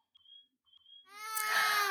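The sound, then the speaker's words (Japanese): A baby bursts into a loud, wailing cry that swells and holds, preceded by two faint, thin whimpers; no one is talking. “あ、赤ちゃんが泣いています。”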